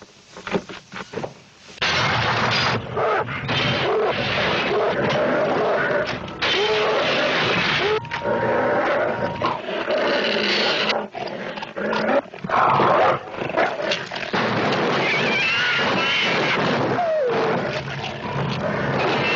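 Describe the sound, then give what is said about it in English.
A dog growls and snarls loudly and almost continuously, with harsh, rasping bursts and brief breaks for breath. “A nice doggy, but before you pet it, take a good look.”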